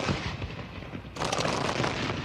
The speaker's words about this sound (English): Māori had already proven they could adapt to firearms, but the Northern War brought a new challenge. Artillery bombardment.